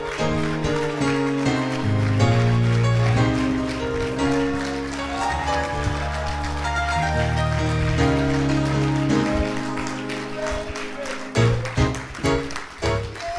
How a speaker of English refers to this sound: Will somebody lift their voice right now with that hand clap? God, we love you.